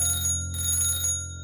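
An old-style telephone bell rings in one sustained burst of bright, metallic jangling lasting over a second, loud and steady before fading slightly at the end, with no voices.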